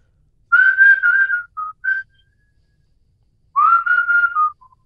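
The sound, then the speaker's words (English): A person whistles the chorus of a popular pop song, two clear phrases of sustained, gliding tones separated by a short pause, with no talking. “Do a nice little song there with a whistle.”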